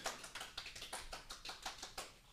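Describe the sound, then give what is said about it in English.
Hands clap in a quick, fairly even run of sharp, bright smacks, about a dozen over a couple of seconds, moderately loud with no voices. “Extendo on the intro applause, I love it.”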